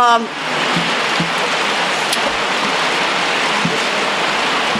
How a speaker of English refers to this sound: Hey, look, guys, rain. I know. This is awesome. Sounds great.